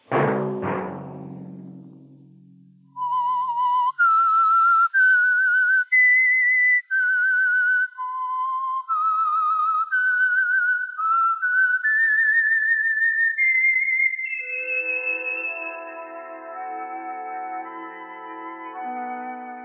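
A loud, clear whistled melody of sustained, sliding notes rising step by step, the signal theme of the Signal Oil Company radio program The Whistler, heard alone, then giving way to a swelling orchestral chord that holds to the end.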